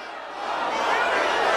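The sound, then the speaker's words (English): A large crowd at a presidential campaign rally for Arizona Senate candidates roars with many voices at once, chanting to build the border wall, building in loudness over a short stretch. “The crowd chanting to build that wall.”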